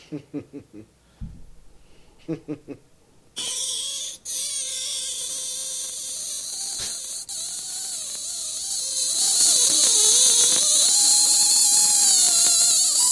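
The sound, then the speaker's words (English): A sink drains through its rubber stopper, whose top part has come off and left a little hole. The sound starts with a few short gurgling bursts, then a steady rushing hiss carrying thin whistling tones that waver and grow louder toward the end. “The plug in my sink, you know, the rubber stopper that you put in your sink, the top part came off, so it was just the rubber stopper part with a little hole in it, with the sink draining through it, and it was just whistling at the end.”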